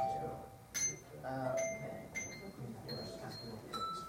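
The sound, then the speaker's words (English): Several short, bright handbell tones at different pitches, plucked one after another on a table, with brief damped rings, over a low murmur of room noise and faint voices. “Plucking used to be, say, like this, instead of with the bell shown, turn it over.”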